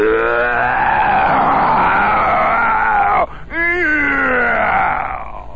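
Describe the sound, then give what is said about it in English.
A loud, steady engine roar from a race car running on castor oil and high-octane gasoline as it is taken around the track for test laps, its pitch shifting as it revs, then a brief cut-off before it climbs again in another gear and fades slightly at the end. “And for 10 minutes, he roared around the track, and we stood and watched with our eyes as big as tennis balls.”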